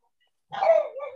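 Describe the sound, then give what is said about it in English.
After a brief silence, a dog outside lets out a single drawn-out bark that trails off into a lower, wavering tone, at moderate loudness with no talking. “The dogs outside decided that they all needed to prove that they could bark.”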